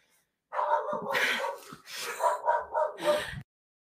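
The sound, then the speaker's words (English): Protective dogs bark loudly in a rapid, agitated run of overlapping barks and yips lasting about three seconds, then stop abruptly. No one is speaking. “Dogs that are very protective.”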